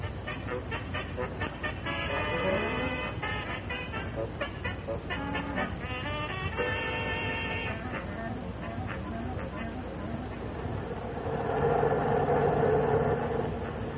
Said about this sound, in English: Must be near the place where we get off by now. Yeah, Pop. We've been on this bus more than an hour.